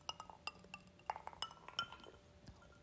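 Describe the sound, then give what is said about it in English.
Glasses clink together during a toast, repeatedly in a quick, irregular flurry of bright, ringing taps, fairly quiet, with no talking. “And right about now, it's time for another sip.”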